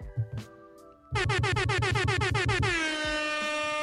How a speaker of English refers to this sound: What's up, Libra? Yeah. Air horn for the Libra.